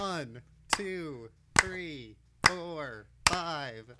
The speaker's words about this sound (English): 1, 2, 3, 4, 5. I'm curious what that looks like to you on your side, because I'm clapping in time with your claps.